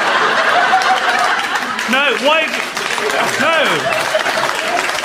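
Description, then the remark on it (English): An audience claps in a dense, steady wash of applause lasting several seconds, with bursts of laughter and a few voices rising over it. “Only clap if it's on the basis of something I've done, not some kind of emergent thing you've hallucinated between yourselves.”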